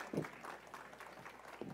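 Soft, steady applause from a gathered crowd, a dense patter of many hands clapping at low volume, with a faint low hum underneath and no one speaking.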